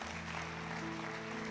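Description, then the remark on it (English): A large church audience claps steadily to celebrate those who prayed a prayer, a dense, continuous wash of applause that holds at an even level throughout, with low sustained musical tones humming underneath. “Come on, can we just celebrate those that prayed that prayer today, honestly? Man, that never gets old. Come on, clap again.”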